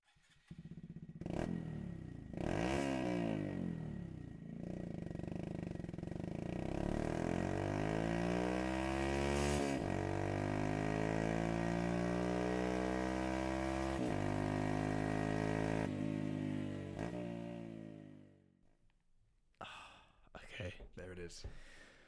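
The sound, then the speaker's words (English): A loud single-cylinder motorcycle with an aftermarket exhaust revs hard, its pitch climbing through a gear change before bouncing hard off the rev limiter after second gear, then dropping away into quieter sounds near the end. “Sort of extreme rev limiter hit after second gear.”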